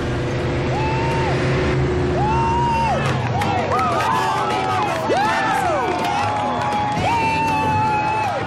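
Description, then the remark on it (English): A race car's engine revs and pulls away as a crowd cheers loudly throughout, a thick, continuous roar of voices and motor noise. “It was really just about how good their race team was. So apparently they did pretty well. There it goes.”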